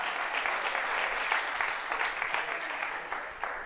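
An audience claps steadily during a sermon, a dense crackle of many hands with no pauses, holding a fairly even loudness throughout with a few sharper claps popping out.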